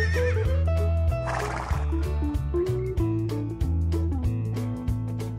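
A single short horse whinny, shrill and wavering, rises briefly over steady background music with a pulsing bass line, then fades as the music continues.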